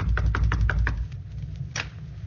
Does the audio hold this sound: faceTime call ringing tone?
no